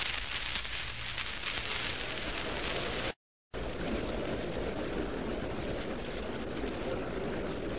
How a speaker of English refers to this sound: The crowd is buzzing. People are filing to their seats.